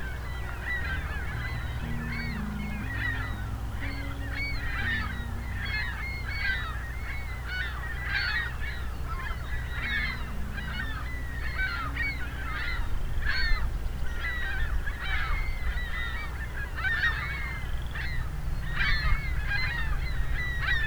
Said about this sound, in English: A lot of ringbill calls. Ringbill gull calls. They seem to have collectively decided to change direction. And changing direction again.